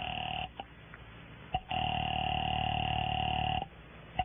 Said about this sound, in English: I made another call there in the phone booth.